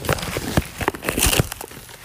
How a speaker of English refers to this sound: Okay, you guys, we're gonna show you how to make cup of noodles correctly. Okay. Okay, what you need to do is open up the noodles.